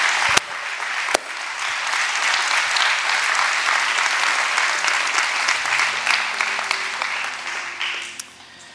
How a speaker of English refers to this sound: Would you stand to your feet and let's clap to the Lord one more big time. All the people online, clap to the Lord all one time.